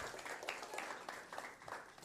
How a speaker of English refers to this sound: So y'all give the Teen City leaders a hand clap.